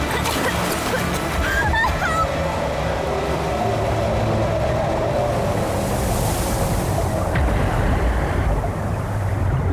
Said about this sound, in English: The river's too fast.